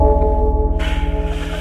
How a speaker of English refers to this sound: Shall we ring the spoiler bell at least? Please, yeah. And then spoil the hell out of these dreams. I'm going to ring it now, okay.